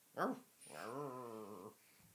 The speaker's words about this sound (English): One, there's a dog in the room. This is the first time this has happened. This is Teddy. Speak, Teddy, speak.